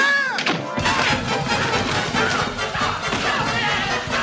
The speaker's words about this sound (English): Ah! Oh, golly. You know how long it's been since I've heard the boys roughhouse.